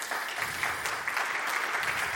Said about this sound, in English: Round of applause for Sharon, please.